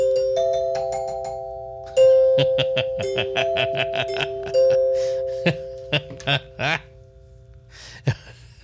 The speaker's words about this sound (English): Well, the more episodes we do, the more use you'll get out of those bells.